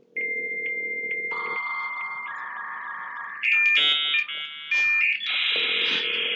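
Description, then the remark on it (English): A work phone's electronic ringtone plays loudly and continuously, layering steady synthetic tones and shifting beeping pitches into a bright, insistent melody with no voices over it. “My work ringtone is that.”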